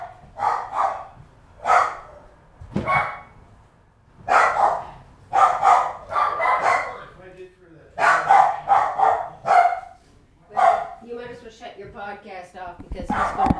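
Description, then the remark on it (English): A dog barks again and again, loud, in sharp bursts of one to three barks separated by short pauses, continuing steadily for over ten seconds. “Just going to keep barking until he leaves.”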